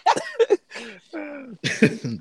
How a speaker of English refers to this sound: Sound like you might get your wish. This nigga coughing to death over there.